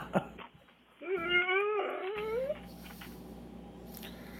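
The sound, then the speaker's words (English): A dog named Jake lets out one drawn-out, wavering howl that climbs in pitch for about a second and a half, clear, followed by quiet background noise. “Before we get into that, I got a new clip of Jake Howling, her dog.”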